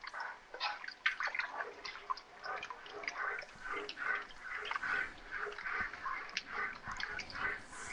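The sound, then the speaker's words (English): A spoon stirs a thick chili of tomato paste, canned Rotel and fire-roasted diced tomatoes with garlic, ground turkey and chopped onion in a cooking pot, making a steady run of soft wet scrapes and light clinks against the metal, with no talking. “Let me stir up what we have in the pot.”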